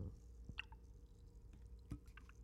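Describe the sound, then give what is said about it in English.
Thick banana pudding pours with soft wet plops and squishy glugs, a couple of sharper splats standing out over a low steady rumble. “This is the pour.”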